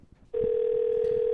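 A steady, unbroken telephone dial tone switches on abruptly after a moment of low background rumble and holds loud and even to the end, with no one speaking.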